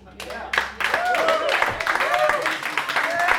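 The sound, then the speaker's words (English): A thin, scattered patter of hand claps from about five people, irregular, with voices chattering over it. “Tepid smattering of applause. I have counted 5 applauses. 5 different sets of hands clapping.”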